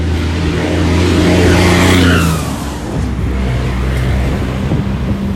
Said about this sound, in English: Now there are 3 big trucks coming this way, so let's listen to them. They're red, white, and blue.